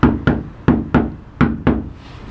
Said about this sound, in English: Let's knock loud and hard.